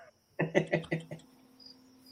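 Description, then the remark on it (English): Crickets chirp in a quick, clear run of four or five rhythmic pulses, then fade into a faint, thin high-pitched trill against a quiet background. “No, all I hear is crickets.”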